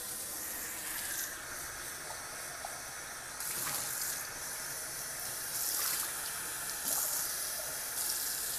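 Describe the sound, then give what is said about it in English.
Water splashes and trickles steadily from glasses into a sink, with a few brief louder gushes along the way and no one speaking. “I'll leave a little water in the bottom of those glasses.”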